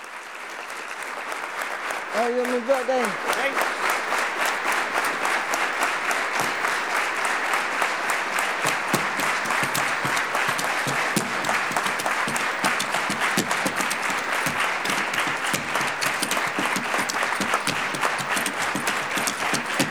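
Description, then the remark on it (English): An audience claps loudly and continuously to give a dance rhythm in place of instruments, the applause gradually settling into a steady rhythmic beat, with a brief vocal whoop near the start. “they would simply start clapping the rhythm. He got the audience to do just that”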